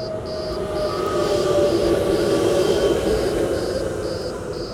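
An electric tram in Collins Street rumbles steadily along its rails, a loud, continuous roar, while a high-pitched electronic beep repeats at a quick, even pace throughout.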